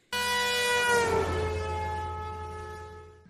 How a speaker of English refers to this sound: I'm honking all the way. I've even got a couple honk sound effects I'll insert now.